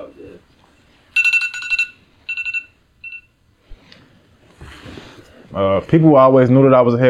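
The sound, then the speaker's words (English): A phone sounds in three bright electronic tone bursts, each shorter than the last, fairly loud, then a person starts talking. “oh shit, my phone.”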